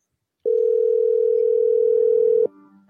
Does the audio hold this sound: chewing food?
no